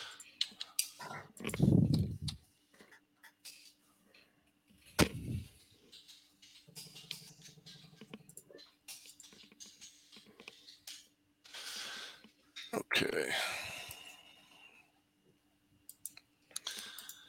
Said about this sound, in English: Ready? Yeah, I'm just typing a few notes here.